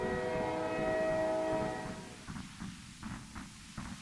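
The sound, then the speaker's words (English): A train whistle sounds one long, steady, multi-toned note over a low rumble of wheels on tracks, then fades, leaving the rumble and a series of rhythmic rail clacks. “Over the dull roar of the tracks, you hear the train's whistle, a long, plaintive cry, like a lone wolf in the endless desert.”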